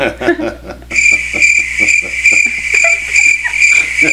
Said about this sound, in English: Sorry, you guys had to hear that. Is that crickets? Yeah.